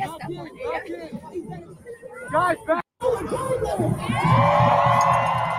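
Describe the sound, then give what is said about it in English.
A large crowd of protesters roars with overlapping shouts and cheers, the dense babble swelling louder and fuller toward the end after a brief gap, many voices mixing together. “So there you see a massive crowd there.”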